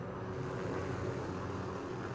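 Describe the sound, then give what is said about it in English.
A steady, droning engine rumble of a video game helicopter in flight as players take the chopper, heavy in the low end and constant in loudness throughout, with no voices over it. “They're taking the chopper.”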